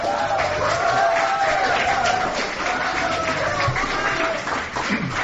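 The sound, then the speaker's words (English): An audience at a panel called How to Be a Content Creator, presented by the MBS show, applauds and cheers steadily, dense clapping forming a continuous wash of noise while voices whoop and shout over it, holding at a fairly loud level for the whole stretch. “That's a really round of applause.”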